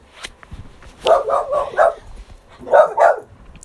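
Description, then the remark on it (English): A dog that wants to be let out barks in two quick bursts: a run of four sharp woofs, a short pause, then two more, fairly loud against a quiet background. “And pardon me, the dog wants to be let out.”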